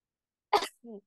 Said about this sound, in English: Bless you, ….